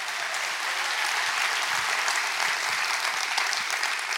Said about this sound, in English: Somebody needs to give the Lord a thunderous applause today.